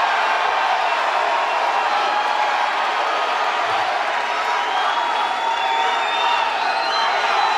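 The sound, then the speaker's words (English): A raucous crowd at a Bernie Sanders event cheers loudly and continuously at the news of continuing to the last primary in Washington, D.C., a dense wall of shouting and whooping voices with scattered high-pitched yells rising above the steady roar for several seconds. “Raucous. Crowd.”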